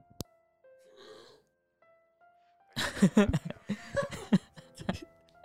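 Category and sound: human body sound, burp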